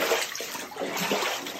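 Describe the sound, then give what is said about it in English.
Floodwater from the remnants of Hurricane Ida's historic rain rushes and churns in a steady, dense wash of sound around a city bus in New York City, fairly loud, with no voices and no breaks for the whole short stretch. “Water inundating a New York City bus and all over the region.”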